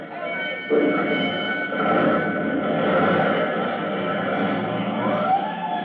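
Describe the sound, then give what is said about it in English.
The siren of Engine Company 209's fire engine wails in long, sustained tones over a dense engine rumble as it rolls out to its first alarm, with a rising sweep near the end. “Engine Company 209 rolls to its first alarm.”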